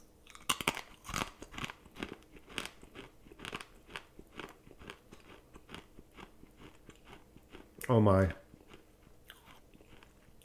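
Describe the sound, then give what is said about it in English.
Steady crunchy chewing of brittle, stale gum just taken out of a trading card pack and its wrapper, a quick run of crackly bites early on followed by softer rhythmic chomping, with a brief exclaimed remark from a voice near the end. “And I have to try the gum.”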